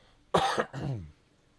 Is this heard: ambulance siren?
no